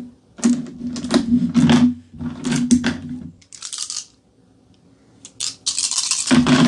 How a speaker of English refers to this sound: I may roll 2 extra dice.